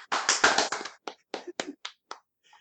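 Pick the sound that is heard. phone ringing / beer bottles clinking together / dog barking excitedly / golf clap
golf clap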